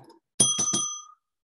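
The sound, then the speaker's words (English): A bright bell sound effect rings in three quick, loud metallic strikes to reward a viewer's comment, its clear tone lingering briefly before fading out; a faint voice murmurs just before it. “You get the bell for that one.”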